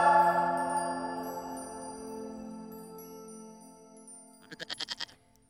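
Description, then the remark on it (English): A goat bleats loudly, a long wavering cry that fades out, followed by a short burst of rapid, stuttering bleats near the end. “get that goat out of here.”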